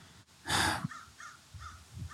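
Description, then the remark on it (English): A crow gives one loud, harsh caw, then several shorter, softer caws at fairly regular intervals, with no talking over them. “I mean, good old crows. Good old crow.”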